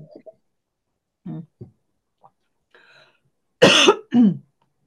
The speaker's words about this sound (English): Excuse me, the cough is coming up again.